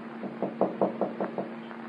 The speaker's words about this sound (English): I know he's in. I didn't see him go out today. Well, there's no answer. Knock again